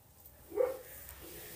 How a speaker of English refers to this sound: Oh my god, my dogs are literally barking like insane outside.